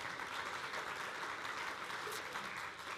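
A steady round of applause from a crowd, dense continuous clapping at an even level for about three seconds with no voices standing out.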